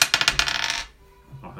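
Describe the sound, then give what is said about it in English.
A twenty-sided die clatters across a tabletop in a quick burst of bright rattling taps, bouncing several times before settling, then a faint thud. Fairly loud, with no voices. “No, you're not doing a check, just roll a d20.”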